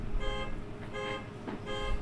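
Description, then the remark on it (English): An alarm block going off in repeated electronic bursts, three evenly spaced pulses of a bright, buzzy tone over a low rumbling background, with no one talking. “what was this alarm block for?”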